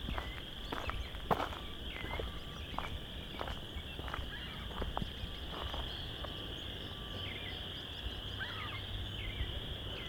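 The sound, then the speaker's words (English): A dense, unbroken chorus of chorus frogs trills steadily in late March at the west end of Vine Mount Marsh, with scattered crunching footsteps or clicks over it and no voices. “We've got a lot of chorus frogs.”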